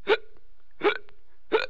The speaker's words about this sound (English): It's this kind of weird thing we get sometimes where we have this involuntary sound of the hiccup